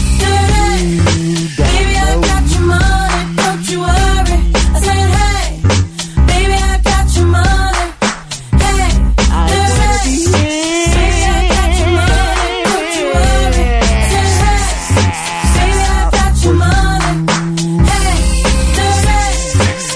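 A loud hip hop single plays on Freedom FM's Classic Chart Countdown of the top 20 singles from 4 July 2000, with a heavy bass line, a punchy, steady beat and busy layered melodic parts running nonstop over twenty seconds.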